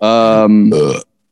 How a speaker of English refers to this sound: I just started a burp counter. Just count your own burp.